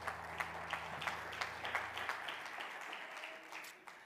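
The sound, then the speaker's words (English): A church audience claps their hands to the Lord as they are being seated, a steady, scattered burst of applause that carries on for several seconds before thinning out, with faint voices underneath and a low hum that fades midway. “One more time, clap your hands to the Lord as you're being seated.”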